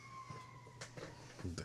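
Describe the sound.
Faint emergency vehicle sirens wail steadily, holding a high tone for under a second before fading as the vehicles drive by outside, while people talk and partly cover it.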